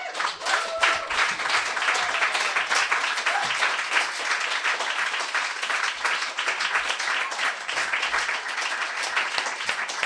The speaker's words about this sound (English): Thank you, Chloe Caldwell, for starting us off. I'm going to keep clapping.